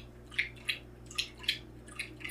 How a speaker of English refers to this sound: I can see that the microphone's picking up the dog drinking water.